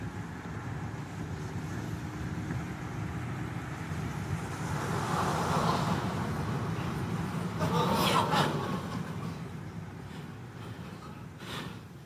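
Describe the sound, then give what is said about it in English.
Dash cam recording of steady, loud road rumble from a moving vehicle, with a swell of noise midway and two short, gritty bursts toward the end as the truck in front of the dash cam drifts slightly off the road. “The truck in front of the dash cam does just a little drift.”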